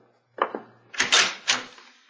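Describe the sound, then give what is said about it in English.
A couple of sharp mechanical clicks, like a latch or lock being worked, followed by a louder rattling clatter as a door is pulled open. No voices. “Open the door, Robert.”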